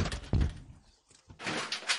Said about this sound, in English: Why are they knocking? They're still knocking.